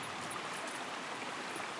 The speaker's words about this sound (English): So now we've got to find our way across the stream. It broadens here, and it looks like someone's made a sort of bridge with some stones and branches.